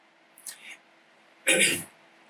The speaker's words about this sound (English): Almost coughed in the mic.